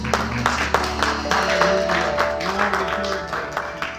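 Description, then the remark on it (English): A group clapping their hands, a steady flurry of sharp, overlapping claps lasting the whole stretch, with murmuring voices and a faint sustained tone underneath. “God a hand clap.”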